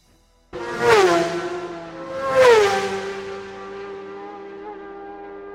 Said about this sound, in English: The keening engines and the hiss of the tires skimming the asphalt was the backdrop to the rising wave of hatred that Virat struggled to contain within himself.